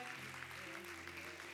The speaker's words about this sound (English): Give the Lord a big clap, will you?